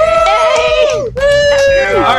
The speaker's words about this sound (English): Let me point out there that I'm cheering because we hit episode 100. Everybody else is cheering because we actually just started recording over an hour and a half after we started trying to get together for this show.